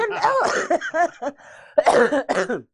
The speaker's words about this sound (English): Sorry, guys. You're gonna hear a lot of sniffles and a lot of coughing throughout this episode. I apologize for doing it in your ear, but I'm still a little bit sick. I can't help it.